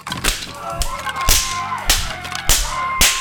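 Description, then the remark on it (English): A leather blackjack whacks someone's head about five times at an uneven pace, each blow a loud, crisp smack with a short tail, and no voices in between. “You're whacking me over the head with that leather blackjack.”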